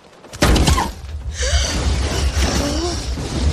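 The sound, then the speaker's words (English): A sudden heavy thud of goat meat slamming onto a glass sunroof, loud, with blood hitting the glass, followed by a sustained noisy rumble with gasps and faint shrieking voices underneath. “And man, that goat hitting that piece of meat and blood hitting that glass.”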